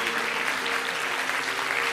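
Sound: audience hand clapping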